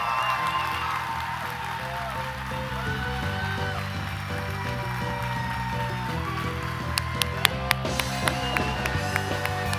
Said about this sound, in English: and if you guys could give them a round of applause.